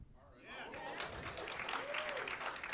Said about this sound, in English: He thought he had that one. Golf clap. Huh? He got a golf clap.